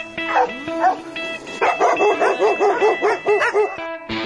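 A dog yips and whines briefly, then breaks into a rapid, loud run of barks in quick succession, with a faint steady tone humming underneath.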